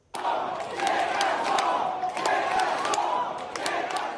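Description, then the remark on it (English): A large crowd of stranded Canadian Sunwing travellers, whose flights home from a vacation hotspot were cancelled due to severe weather, chants loudly and steadily, many voices blending into a dense roar, punctuated by sharp bursts that could be claps or shouts, for about four seconds. “Flight delays, missing luggages, loud chanting.”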